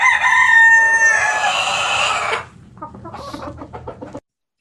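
A loud, close rooster crow rings out for a couple of seconds, then gives way to a run of softer, quick hen clucks before the sound cuts off.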